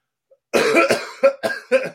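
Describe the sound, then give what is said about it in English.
A loud fit of coughing: one long harsh cough followed by three or four shorter, sharp coughs in quick succession, with no talking. “I'm coughing. I'm turning red myself.”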